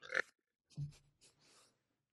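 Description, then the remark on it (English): A puppy named Clover snorts and snuffles through her nose in a few short bursts: a sharp sniff, then a low grunting snort, followed by softer breathy snuffles. “That I heard. Just her big fat nose.”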